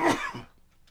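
sneeze

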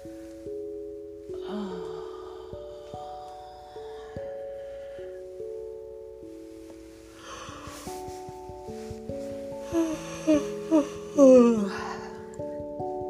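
yawning

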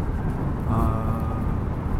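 car interior noise

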